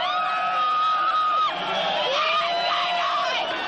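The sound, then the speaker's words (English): A crowd of Newcastle Knights fans screams and cheers in celebration at the full-time hooter, many high-pitched voices overlapping into a loud, continuous roar that barely dips midway before surging again. “The full-time hooter brought tears of joy to some and sent others into a spin, while many just couldn't stop screaming.”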